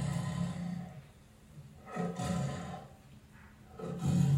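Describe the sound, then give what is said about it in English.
A tiger lets out deep, rumbling roars in three growling bursts, the last one loudest, with brief quieter breathing gaps between them and no voices. “Why leave the window open when there's a tiger right outside?”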